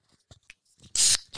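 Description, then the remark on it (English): A can of pink grapefruit Sparkling Frost sparkling water from Aldi cracks open: a couple of soft metallic clicks from the tab, then a loud, bright burst of fizzing hiss that cuts off and briefly flares again. “I have a pink grapefruit that I'm enjoying here, and I'm going to crack this open with the bluest Meanie on 3, 1, 2.”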